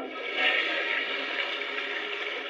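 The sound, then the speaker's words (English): A steady rush of water pours through a toilet flush, a continuous hissing gurgle at even loudness for a couple of seconds with no voices over it. “A toilet flushed inside of him.”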